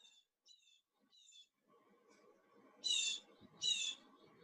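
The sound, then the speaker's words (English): A few short, high bird calls come first, then two louder, brighter chirps ring out over a low, busy rumble of outdoor background noise. “I hear birds.”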